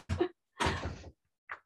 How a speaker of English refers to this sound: We're leaving here. Indeed. The door open. We're all set.